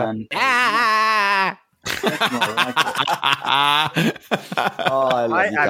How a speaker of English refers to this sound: hear the commotion and pain of all his friends as they scream out with unbearable pain.